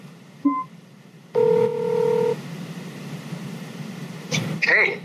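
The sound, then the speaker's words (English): Short electronic phone tones as a phone call is placed: a brief dialing beep, then a steady two-tone ringback lasting about a second, followed by a quick chirp, all over low background hum. “Of course, you can make a phone call.”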